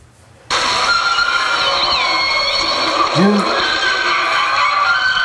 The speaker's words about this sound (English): Here's his roar, because it sounds like a rusty gate, which I love.